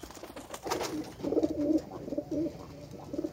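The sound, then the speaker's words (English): A bird at a windowsill coos softly in a series of low, throaty warbling calls, fairly quiet, with a faint background hiss and no talking. “You're staring at the window and having an uninvited but sweet visitor at your windowsill.”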